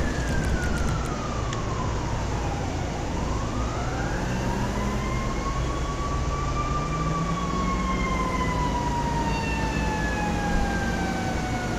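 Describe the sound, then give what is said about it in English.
A fire truck siren wails in slow rising and falling sweeps, loud, over a constant heavy rumble of engine and road noise, with no voices. “He's driving a fire truck.”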